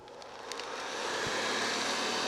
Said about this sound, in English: That sound may make you think of housework. After all, a vacuum cleaner's job is to clean. But to Mike Arrigo of St. Louis, it's music. Each one has a different pitch, and yeah, it does kind of create an image.